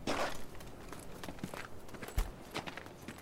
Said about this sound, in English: I heard footsteps as I moved into position. But once I got there, it was silent.